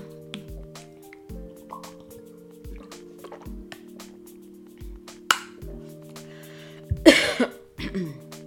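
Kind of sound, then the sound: food or drink, drinking water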